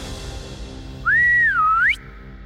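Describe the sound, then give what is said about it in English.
A single clear whistle rises, holds steady, dips, then swoops upward before cutting off, loud over a quiet background with no talking, as the mythic hero Shibalanke whistles to call on the animals for help. “Shibalanke whistled.”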